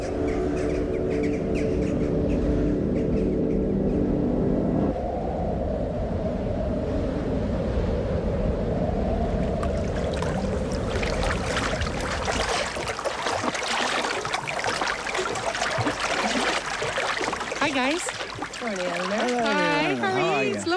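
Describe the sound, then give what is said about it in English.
Water sloshes and laps steadily against a boat's hull shortly before it sets out, over a low rumbling hum at first, with bright warbling birdcalls rising toward the end. “Thank you and so much you. For taking me out in your boat.”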